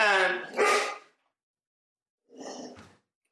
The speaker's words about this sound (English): Your devil dog said hello. He's killing me right now.